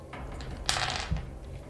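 A short clatter of dice tumbling across a hard surface for a defense roll in a tabletop game, a bright rattle lasting about half a second and ending in a soft thud, moderately loud, with no talking.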